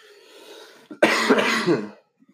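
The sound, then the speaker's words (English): A single harsh, raspy cough, one the person has had for seven years, bursts out loudly after a brief throat-clearing rumble, then trails off into quiet with a couple of faint clicks. “There's that cough I've had for 7 years.”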